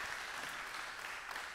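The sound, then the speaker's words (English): An audience at a worship service applauds steadily, giving a hand clap of praise. Dense overlapping hand claps make a bright, continuous patter at moderate volume, with no voices standing out. “Can we just give him one more hand clap of praise in the house?”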